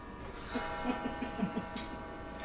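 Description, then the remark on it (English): An overwound clock ticks in a quick, slightly uneven series of sharp little clicks, fairly quiet, with no one speaking. “We had an issue with the clock.”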